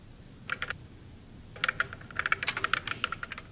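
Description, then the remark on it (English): Rapid clicks of typing on a computer keyboard to converse with a computer program, a short burst followed by a longer run of keystrokes after a brief pause, fairly quiet, with no voices. “Eliza is a computer program that anyone can converse with via the keyboard, and it'll reply on the screen.”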